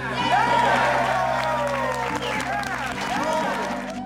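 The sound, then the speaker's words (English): A large crowd cheers wildly at an election victory speech, a loud, sustained roar of many overlapping shouting voices with some clapping underneath, staying at full intensity for about four seconds. “Crowd went wild.”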